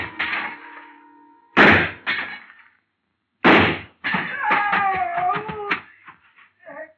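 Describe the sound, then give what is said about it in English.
Three loud, sharp gunshots ring out in a store, shooting out a glass showcase that a man is standing on, each with a brief crashing tail, followed by a stretch of high, wavering squeals and scattered clatter fading out. “I started deliberately shooting his foothold out from under him.”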